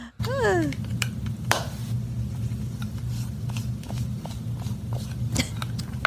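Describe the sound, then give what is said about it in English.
Makeup brushes rub continuously against a microphone with soft, scratchy brushing, a steady low rumble and occasional sharper clicks and scrapes. It opens with a brief warbling, falling squeak, and no one speaks. “She's rubbing brushes up against the microphone.”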